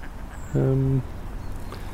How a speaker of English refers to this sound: It's obviously that time of the morning. Coffee time at the duck pond. Yeah. Well, mostly mallards there, even now. Apart from this white duck.